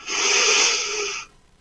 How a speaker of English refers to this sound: Breathe, breathe into your solar plexus, breathe into your diaphragm.